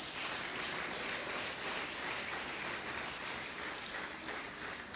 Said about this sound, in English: That's a blessing. Clap your hands for him.